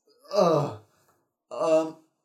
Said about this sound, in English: I'm gonna get a yawn out.